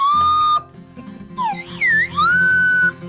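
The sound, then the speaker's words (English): A slide whistle is played loudly during a jam session over a busy low musical backing, first holding a steady note, then swooping and wavering up and down in pitch before settling on a long tone. “Here, yes, it's take a slide it away, whistle, gents.”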